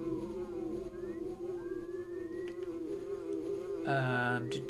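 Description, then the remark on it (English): A steady, droning insect buzz from a Super Nintendo video game, the character Buzz buzzing around the party's heads as they walk home, hums continuously throughout, joined near the end by a brighter, louder electronic tone layered over it. No one speaks. “So now Buzz is literally buzzing around our head as we walk back to home.”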